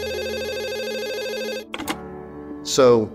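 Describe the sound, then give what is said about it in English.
A telephone rings with a steady warbling electronic trill for about a second and a half, loud, then cuts off as a voice starts speaking. “So I was working on a story and the phone rang, and it was an executive from Warner Brothers, a friend of mine,”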